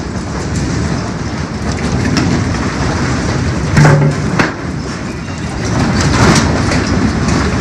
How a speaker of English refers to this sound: So I'm probably hearing the earthquake noises right now. That's probably what I'm hearing.